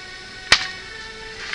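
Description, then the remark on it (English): A single sharp, crisp slap on a hand, cracking out once against a quiet, faintly humming background with no voices. “You can heard that. Slap that hand.”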